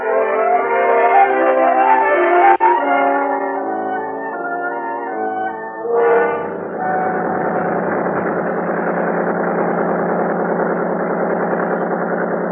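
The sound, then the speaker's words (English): A few seconds of tonal, melodic music give way to the steady, buzzing drone of a big 35 outboard motor pulling a boat up a lake at an easy 39 on a clear, warm day, running continuously at an even pitch and loudness, with no talking. “The big 35 on Buster's boat pulled us up the lake at an easy 39.”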